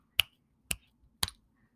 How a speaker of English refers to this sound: I can snap my fingers now.